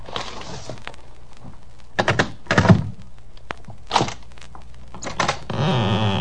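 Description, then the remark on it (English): A letter scrapes and rustles as it is pushed under the door of a flat, mixed with a few soft thumps against the wood. Ends in a steady scraping hiss, with no talking. “Hey, put it under the door. Okay. Here it comes.”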